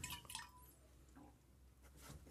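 Faint clinks of a cup or bowl at the start, followed by soft, wet slurping sounds of someone sipping soup and green tea, with no talking.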